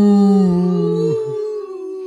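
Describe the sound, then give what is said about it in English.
A single drawn-out vocal moo, a person imitating a cow, loud, with a steady low tone that bends slightly and fades at the end. “And when she got really bored, she mooed like a cow. Moo.”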